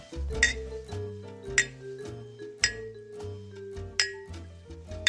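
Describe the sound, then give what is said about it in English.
Two glasses clink together several times, bright ringing taps spaced about a second apart, each leaving a short resonant tone that lingers beneath the next strike. “Is that two glasses clinking together? Exactly!”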